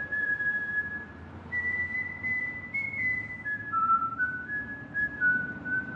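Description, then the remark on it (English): A clear whistled melody played before a game in Baltimore plays for the full six seconds, a single sustained tone gliding between pitches in a slow, tuneful line over a steady low background hum. “Before the last time the Chiefs played the whistle? They play the whistle.”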